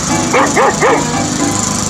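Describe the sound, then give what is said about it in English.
A dog named Rover barks three times in quick succession, sharp, with a steady background hum underneath and no talking. “I'm looking over my dead dog”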